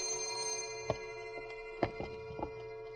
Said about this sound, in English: Hello? Oh, I'm sorry, operator. It's my alarm clock.